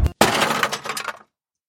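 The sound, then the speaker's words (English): A car crash as a Tesla Model S Plaid is hit from behind by a police car on a fairly busy road in Mexico: a low thud, a brief pause, then a loud burst of shattering glass and scattered metallic clinks that tumble for about a second before stopping abruptly. “All of a sudden, someone hits you from behind.”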